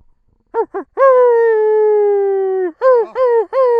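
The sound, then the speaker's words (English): The howl of three wolves running fast toward the listener: two short yips, then a long sustained wail that slowly sinks in pitch, followed by a few quick rising-and-falling cries, loud and with no talking. “You hear the howl of three wolves running towards you fast.”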